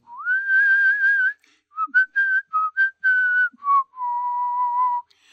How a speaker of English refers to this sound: Happy-go-lucky. Whistling a happy tune.